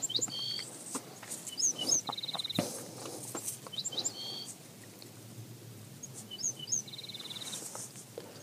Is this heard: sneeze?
no